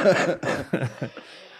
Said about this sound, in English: You're coughing. You all right? You look healthy today, but you sound like you're dying of cancer. I have an infection.